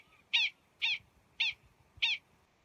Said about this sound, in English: We leave you this week in the company of prairie dogs.